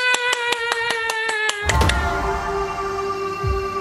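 A quick, steady run of about nine hand claps over a sustained musical tone, followed by a louder burst as the tone carries on alone. No one speaks.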